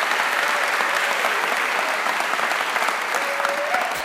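A crowd breaks into steady, sustained applause, a dense wash of clapping that stays loud and even for several seconds with a faint whistle rising near the end.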